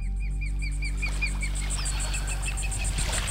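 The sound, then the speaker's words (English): A young eagle gives a steady series of short, thin, high chirping cries over a constant low rumble and a faint pulsing high-pitched buzz, heard along a road through swamps that ends at the water's edge. “I think that's a baby eagle. Sounds like it.”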